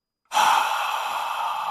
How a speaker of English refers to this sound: That's not just a guy breathing heavily in your ear. The crowd goes wild at this speech.